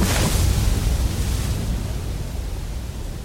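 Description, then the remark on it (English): The 1956 demolition blast that began construction of the Glen Canyon Dam, keyed by a button pushed in the Oval Office: a loud, broad roaring rumble that bursts in at once and slowly fades over a few seconds into a steady, hissing wash of noise, with no voices. “In 1956, the Glen Canyon Dam began construction with an explosion.”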